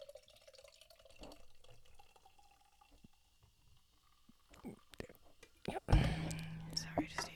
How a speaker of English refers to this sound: I just need to pour my drink.